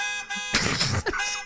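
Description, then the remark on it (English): A car horn, honked to get someone's attention, blares in a sustained, steady honk, fairly loud, with a brief rough burst of noise cutting through the middle before the tone continues. “I'm running up and opening every car and honking their horns to get your attention.”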